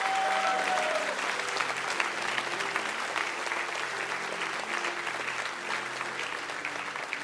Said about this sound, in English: Come on, give God one more hand clap of praise.